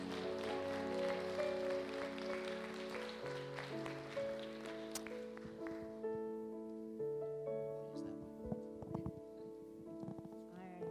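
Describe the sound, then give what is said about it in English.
An audience at a church service claps in praise of the Lord in a dense, steady burst of applause over sustained keyboard chords. The clapping thins out about halfway through, leaving the music with a few scattered claps. “Come on, give the Lord one more hand clap of praise.”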